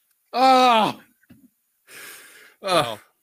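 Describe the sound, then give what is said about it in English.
A person sneezes: a loud voiced intake with falling pitch, a brief pause, a breathy hiss, then another short voiced burst. No words are spoken. “Bless you, man.”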